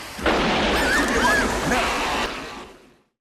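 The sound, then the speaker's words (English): A loud, booming thunderclap sound effect in a film scene as the Rock runs out, with a heavy low rumble and broad crackling noise over loud music, sustained for a couple of seconds before fading out, with a faint voice saying "now" partly buried beneath it. “Yeah, because the music is just too loud and the thunderclap is too loud.”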